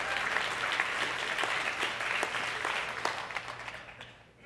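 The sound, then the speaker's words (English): An audience at a church gathering at the old Mountain Hill Schoolhouse applauds steadily for about four seconds to mark the church's anniversary, a dense patter of many hands clapping at moderate volume, then the applause thins out and fades at the end. “So happy birthday or anniversary or whatever, or don't clap.”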